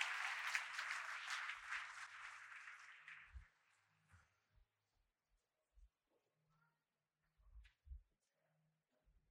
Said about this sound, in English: Amen. Come on, put your hands together. Give the Lord a hand. Clap of praise as you take your seat.